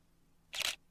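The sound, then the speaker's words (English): A single crisp camera shutter click as the shutter closes after a long exposure of the night sky, a short bright mechanical snap of about a quarter second against a quiet, near-silent background. “The shutter closes.”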